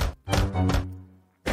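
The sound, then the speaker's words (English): Loud, heavy knocks on a wooden door, as Puss in Boots knocks at the giant's castle door: three in quick succession with a low booming resonance that rings out, then a brief pause before one more knock. “Meanwhile, Puss in Boots arrive to the giant's castle and knock the door.”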